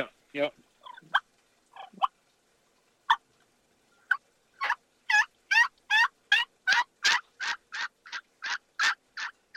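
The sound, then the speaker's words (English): A turkey call played as a run-of-the-mill locate call opens with soft, rolling purrs, then breaks into a long, steady run of loud, evenly spaced yelps with a raspy, high-pitched edge. No one speaks. “Let's hear your turkey call then.”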